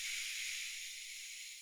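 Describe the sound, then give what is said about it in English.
A single slow, deep inhale through the nose for a count of six, demonstrating a relaxation breathing technique: a soft, steady, airy hiss that holds evenly for a moment and fades slightly at the end, with no talking. “And you close your eyes and begin to relax by taking some slow, relaxing breaths. And a couple of standard techniques are breathing in for the count of six, like this.”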